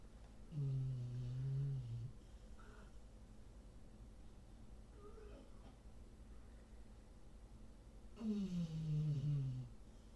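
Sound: dog snoring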